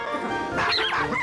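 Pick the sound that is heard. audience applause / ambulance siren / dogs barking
dogs barking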